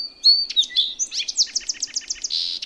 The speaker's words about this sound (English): As young male birds get ready to leave the nest for good, they hear their male parents singing again and again. They learn to copy him. They imprint on their father's song.